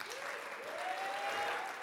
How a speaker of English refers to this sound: It's really important to give honor to where honor is due. And can we stand and clap our hands for the leadership of NCU?